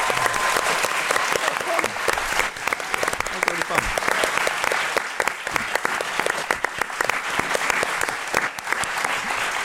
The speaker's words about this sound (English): Thanks once again for giving up your Friday night to be here with us, but please can we give a big round of applause to our special panelist who also gave up his Friday night, Russell Tovey.